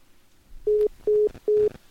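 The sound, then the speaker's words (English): A phone call drops, followed by a disconnect tone: three short, steady electronic beeps at an even pace, clear, with no voices. “Oh, I lost the connection.”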